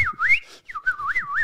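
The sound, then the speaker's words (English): A person whistles an imitation of the Star Wars robot R2-D2's beeping, trilling and swooping up and down in pitch over two quick bursts with a short pause between them. No one speaks. “I'm picturing like C-3PO bent over an Espon 3000 laser jet photocopier and R2-D2 just rolling in by. Boop, beep, beep, beep.”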